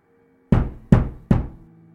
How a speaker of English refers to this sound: Three loud knocks made me almost jump out of my skin, and almost made me fall down the stairs.